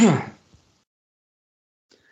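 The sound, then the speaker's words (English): A single loud cough bursts out at the start and trails off quickly, followed by near silence with only a faint click or two. “Be coughing my guts up, it seems.”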